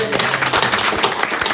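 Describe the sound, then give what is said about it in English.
An audience clapping together in praise of the Lord, a dense, steady burst of many hands filling the short moment at an even, fairly loud level with no clear individual beats. “Oh, let's give the Lord a clap.”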